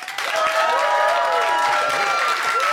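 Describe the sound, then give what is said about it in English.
A crowd bursts into sustained applause to back one side of an argument, a dense wash of clapping mixed with cheers and a few whistles, loud and continuous throughout without any speech over it. “is in the right, would you applaud now?”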